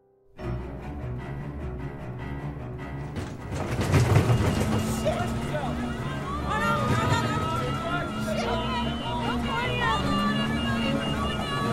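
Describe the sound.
A helicopter engine roars and strains, building sharply after a few seconds into a loud, shuddering mechanical din with warbling whine tones and muffled voices mixed in throughout.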